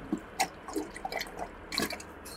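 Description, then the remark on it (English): Thick liquid goo pours and splatters out of the wounded back of a screaming creature in a quick run of irregular wet drips and plops, fairly quiet, with no voices. “You can hear the goo, like, just sort of pouring out the back.”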